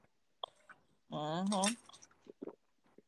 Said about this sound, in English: I've heard you that. You and them big old gulps of wine.